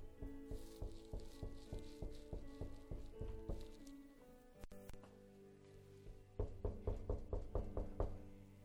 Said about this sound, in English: Watch what it says. He says, look, I stand at the door and I knock.